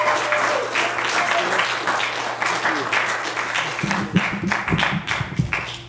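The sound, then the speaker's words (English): A crowd claps for a speaker being introduced, a steady, dense wash of applause that stays loud throughout, with a few voices and cheers rising beneath it toward the end. “Give him a giant round of applause.”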